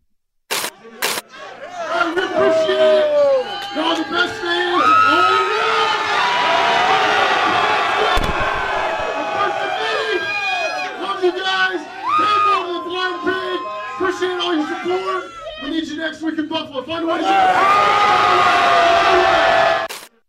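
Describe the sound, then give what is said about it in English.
A packed crowd at a bar called the Blind Pig cheers and shouts loudly for about twenty seconds as Bengals coach Zach Taylor brings them the game ball; many voices overlap in excited yells. A few sharp clicks open it, and the roar swells again near the end. “Okay, the next thing that I saw, Zach Taylor going into this bar called the Blind Pig and giving them the game ball.”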